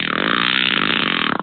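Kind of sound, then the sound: human body sound, fart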